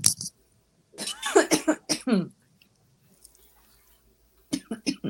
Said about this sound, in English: And while she's coughing and taking a drink of water.